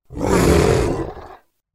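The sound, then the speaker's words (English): A single loud, deep roar from a big cat, rising quickly and holding for about a second before cutting off, rough and throaty with a broad, growling texture. “Oh my gosh, is this a cat's tail?”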